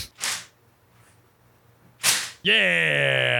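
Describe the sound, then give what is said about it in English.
Two sharp, whooshing cracks of a homemade popper folded from a piece of paper being snapped, about two seconds apart, followed right away by a loud, sustained vocal cheer. “You know, remember those little popper things?”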